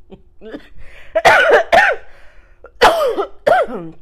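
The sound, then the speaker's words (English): A loud coughing fit: a few small throaty hacks build into four or five harsh, raspy coughs in quick succession, with no talking. “I gotta cut that fucking cough out.”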